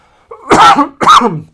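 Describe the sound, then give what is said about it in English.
Two loud, harsh coughs in quick succession, each a broad burst of noise with a brief pause between them and no talking. “I'm still dealing with this crazy, ridiculous cough that just seems to linger.”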